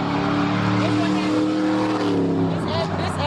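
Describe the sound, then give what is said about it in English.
A loud engine roars and revs steadily for a few seconds as a car speeds and races down a street, with a brief tire-squeal edge near the end. “Cars speeding and racing up and down this street.”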